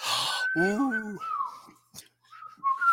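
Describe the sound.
A short whistled tune of a few sustained, gliding notes, moderately loud, with some voiced sounds and breathy noise mixed in at the start.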